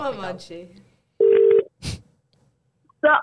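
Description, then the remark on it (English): A loud, steady electronic phone tone sounds once for under half a second, like a keypad dialing beep, between brief bursts of voice and a short clatter. “Onto the phone.”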